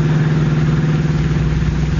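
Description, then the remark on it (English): A car engine runs in a steady, loud drone with a low humming tone and a gritty rumble as the car speeds along an old, little-used highway into the country, holding even throughout with no voices. “Reaching the end of the waterfront road, the car swings into an old, little-used highway and speeds into the country.”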